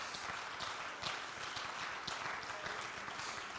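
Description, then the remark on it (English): A church audience, standing, claps steadily together to thank God for his word, a dense and continuous patter of many hands with sharper individual claps standing out, sustained at an even, fairly loud level throughout with no talking. “Clap your hands and thank him for his word.”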